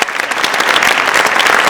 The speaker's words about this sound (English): So just a huge round of applause to both of you. Thank you very much.